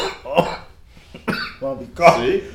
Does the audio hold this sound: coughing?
yes